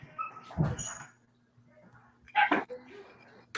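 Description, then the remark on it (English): Small dogs around the corner behind the speaker give two short, sharp yipping barks about two seconds apart, loud, with a low steady hum and faint indistinct sounds in between. “Yeah, it's like some little dogs around the corner.”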